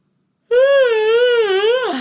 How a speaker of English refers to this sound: That yawn felt really good.